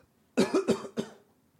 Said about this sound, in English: I have to cough.